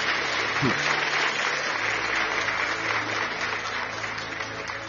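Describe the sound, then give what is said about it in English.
A large audience claps steadily for Jesus throughout, a dense, sustained wash of applause, with faint crowd murmur underneath. “Just clap for Jesus.”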